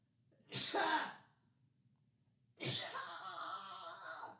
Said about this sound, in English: Sorry, I had to sneeze. That's how I sneeze.